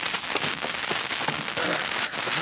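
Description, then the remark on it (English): A fire crackles and pops steadily in a fireplace on an unusually cold night, a dense hiss of burning broken by frequent sharp little snaps, with no voices. “That fire feels good.”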